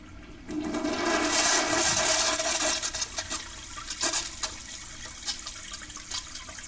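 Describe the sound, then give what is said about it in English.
A toilet flushes with a sudden loud rush of water that swirls and gurgles, then tapers into sporadic trickles and drips as the bowl drains. Clear, with no voices. “Listening to toilet flushing sound effects, you realize how much flushing a toilet sounds like diarrhea.”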